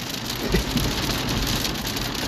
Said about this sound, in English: I want the hail to go away so we can listen to the thunder. Honestly, though.